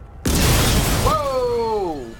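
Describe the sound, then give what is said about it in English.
A sudden loud explosion blows out three floors of offices in a skyscraper and roars on as a dense, rumbling blast with fires, a man's voice crying out over the noise about halfway through. “Explosion! Oh, more explosions!”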